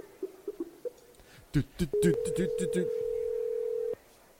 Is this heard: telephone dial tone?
yes